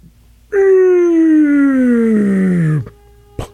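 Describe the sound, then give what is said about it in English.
A train horn blares in one long, loud, sustained blast lasting over two seconds, its rich harmonic tone sliding steadily lower in pitch before cutting off, followed by a brief sharp knock. “Oh, the train's pissed off at somebody.”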